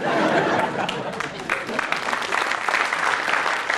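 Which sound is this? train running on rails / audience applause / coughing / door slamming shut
audience applause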